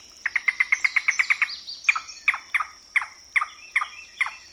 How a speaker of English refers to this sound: A yellow-billed cuckoo. To verify that was what Celia heard, field researchers played this recording from the Audubon Society.